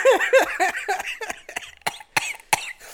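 A loud coughing fit directly into the microphone: a rapid string of harsh coughs that slows into spaced, explosive hacks, with no talking.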